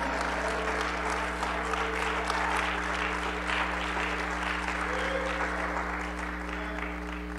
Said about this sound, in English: Someone clap their hands together and say amen.